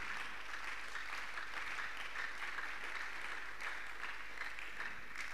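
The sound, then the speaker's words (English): A crowd claps hands for Jesus before a Zippo International Ministry message, in a steady, dense wash of applause that holds constant for several seconds, bright and crackling with no distinct individual claps, and no voices. “Clap your hands for Jesus if you wish.”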